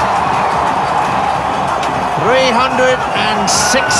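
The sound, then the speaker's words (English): A cricket crowd cheers wildly as Brian Lara reaches 365 not out, equalling Gary Sobers' record. The cheering is a loud, unbroken roar, with individual shouts and whistle-like cries rising above the din in the second half. “Crowd are going wild.”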